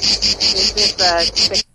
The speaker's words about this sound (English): Is this a cicadas?